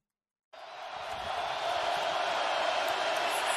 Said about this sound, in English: And I wanted you to pay attention to how loud the crowd noise was. You want me to play that video again? Let's play it again. I'm going to play this video again. Listen to the crowd noise.